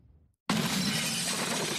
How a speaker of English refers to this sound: The footage is shocking. A pickup truck smashes into a grocery store. But this driver isn't done. He goes on the other side and zooms straight through.